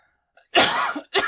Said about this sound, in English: Excuse me. I'm going to cough my head off right now.